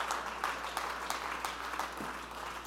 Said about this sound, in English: Let's stand to our feet and clap our hands and praise Him. Oh, clap your hands and praise Him.